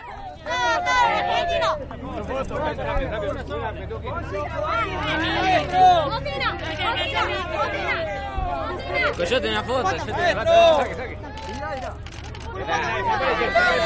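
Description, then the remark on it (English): Fans at the Dakar Rally cheer for Federico Villagra, the third-placed truck driver: a dense crowd of overlapping voices shouting and chattering without pause, with a steady low rumble beneath the noise. “Federico Coyote Viagra, the third placed truck driver, is cheered for by his fans here.”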